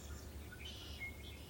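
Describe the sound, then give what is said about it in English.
Faint bird chirps and short whistled calls ring out a few times over a steady low outdoor rumble in Florida, in air cooled after rain, with no one talking. “And you can hear birds.”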